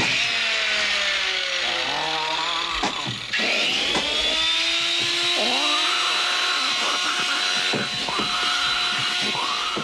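A chainsaw, wielded by the gremlin Stripe as he is about to cut Billy in half, roars loudly and steadily, its pitch repeatedly revving up and dropping back in uneven surges for the whole stretch, with no voices.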